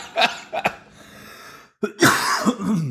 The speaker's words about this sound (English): I don't know where the mute button is. Sometimes coughing just happens before I can get to it.